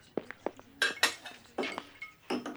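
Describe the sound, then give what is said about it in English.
Dishes and silverware clatter and clink in a kitchen in a quick, irregular series of sharp knocks and rattles, as if plates and cutlery are being picked up and set down. “Stacked dishes after each course. Yes. And here's the silverware over here.”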